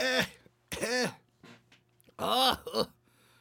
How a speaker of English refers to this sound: My man's told me I had an old man cough.